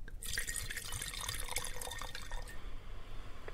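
Wine is poured into a glass up close, a steady gurgling, splashing stream lasting about two seconds before it stops and a quiet room tone remains.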